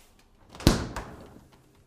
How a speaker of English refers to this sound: His dad paused when he opened the fridge door.